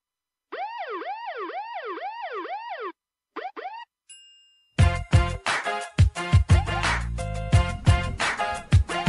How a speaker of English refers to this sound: when you hit me with those sirens to start, I thought they were coming for me, man.